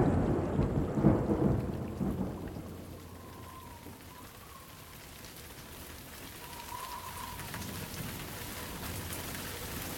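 Steady rain hisses throughout while a deep roll of thunder rumbles loudly at the start, then fades into a low grumble beneath the downpour. No voices.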